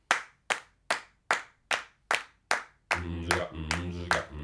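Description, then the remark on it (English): Steady, evenly spaced hand claps beat out a regular pulse, about two per second. After roughly three seconds, sustained voices enter and the clapping carries on beneath them. “A pulsation is presented by clapping hands.”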